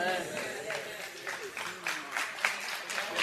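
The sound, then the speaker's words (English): Thin, scattered applause from only about six people in an audience: irregular sharp claps that never build into a full round, with a voice and some murmuring underneath. “All six of you, the lady's scared to clap.”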